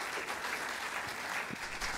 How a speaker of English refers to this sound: Let's give a round of applause for them, shall we?